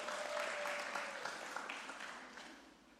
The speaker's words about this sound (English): So can we give them a clap as they come on up?